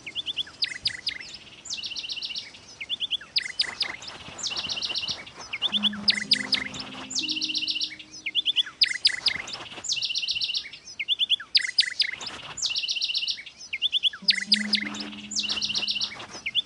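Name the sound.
bird chirping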